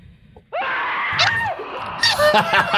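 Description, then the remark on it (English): A loud, strained human scream bursts in after a brief quiet moment and holds for about two seconds, rising and cracking with gasping, wheezy breaks before cutting off. “That's the fucking scream.”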